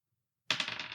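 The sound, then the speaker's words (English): Dice rattle and clatter across a hard surface as they are rolled again in a tabletop game after a failed check, starting abruptly after a brief silence with a quick burst of sharp, bright clicks that keep tumbling for about half a second. No one speaks. “Did not pass, so I roll this again.”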